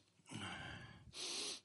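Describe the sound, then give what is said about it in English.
A congested nasal sniff from a sick person with clogged-up airways, with a rough, snorting rattle, followed by a shorter, sharper airy hiss of breath; no talking. “So if you hear me sneeze and cough and it sounds like I have a broken nose, that's what it is.”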